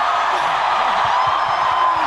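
A big crowd roars and cheers wildly, a dense, steady wall of loud voices and whoops that holds without a break for about two seconds.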